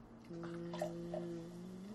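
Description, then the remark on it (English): A drink is poured in a steady stream, making a sustained hollow tone with a few small splashy gurgles over about two seconds, with no one speaking. “Who's pouring a drink at a time like this?”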